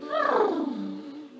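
During a yoga practice, in downward dog pose, someone blows air out through loose, fluttering lips in a voiced, buzzy blubber that slides from a higher pitch down to a low rumble over about a second and a half, with no talking.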